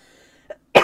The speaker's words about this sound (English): Sorry, I had to cough. That's fine. I'm going to keep that in.